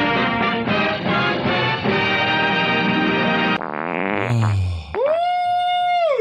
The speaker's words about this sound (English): Now. Oh, I farted.